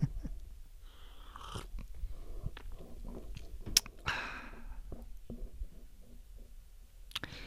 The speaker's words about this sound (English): First, let me take a sip of my mullein leaf tea here, boosting my immune system.